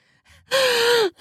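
A woman's sharp, voiced gasp during climax, loud, lasting about half a second and trailing off with a slight downward pitch, preceded by a faint quick breath. No one speaks.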